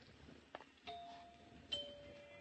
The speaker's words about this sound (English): Nice chimes. Pretty.